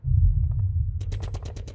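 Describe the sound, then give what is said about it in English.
Rapid bursts of gunfire crackle over a deep, rumbling low drone during a war, the sharp shots starting faintly and then firing in a quick, steady automatic rhythm. “This morning, I awoke to the sound of gunfire, as if 1,000 drums had come alive within the bowels of the earth.”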